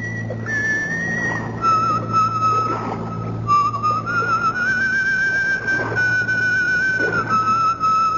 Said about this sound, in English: An apparition for you. A whistling, pipe-smoking lady with a cutlass at her belt.